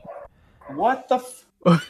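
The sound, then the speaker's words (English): A dog barks several times in quick, uneven bursts, fairly loud, with short yelping barks and brief pauses between them. “Are there dogs? Where are the dogs?”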